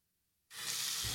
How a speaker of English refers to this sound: Hey, is that a faucet running? Nope, that's not a faucet. That's a river rushing through the forest. It is? Yeah, forest rivers provide over 100 million people with clean water to drink. The water comes straight from the forest to us, in fact.